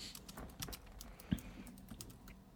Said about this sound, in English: And he's typing it in as we speak. He misspelled consciousness too, which I don't even blame him. That's a tough one.